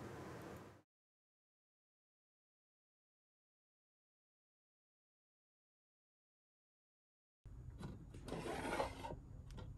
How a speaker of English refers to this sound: So instead, I'm gonna jump straight to getting one out of my mysterious cabinet of wonder drawers, and then we'll take a look at it.